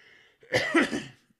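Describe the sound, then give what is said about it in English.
A loud cough, a quick rough burst of two or three hacks run together, lasting about a second with no talking. “But if you don't know, I'm coughing just like Manchester City's coughing after that 2-year ban they got from European football.”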